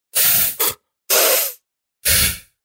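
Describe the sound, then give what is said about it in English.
A series of sharp, breathy sniffs: three short bursts of airy, hissing noise with brief pauses between, the first ending in a quick double catch. No one speaks. “and she sniffed twice and then said, I'd put like three Fs.”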